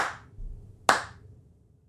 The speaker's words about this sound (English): He claps loudly and the actors turn to him.